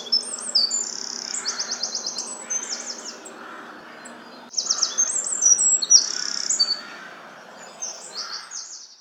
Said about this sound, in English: And they have this brilliant trilling sound. Whenever I am listening to the dawn chorus or anything like that, I can immediately pick out the wren and it makes me smile every time.